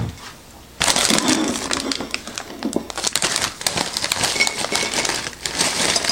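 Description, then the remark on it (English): Crisp Zapps potato chips tumble out of a bag onto a small plate in a steady, rattling cascade of crunchy clatter and crinkling, lasting several seconds with no talking. “So let's open up, see what's inside here, and I like to pour them out on a plate just so you can see what you're getting.”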